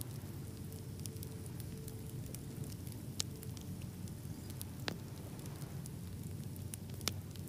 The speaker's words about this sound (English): Hear the crackling of the wood. And watch the smoke as it rises into the air.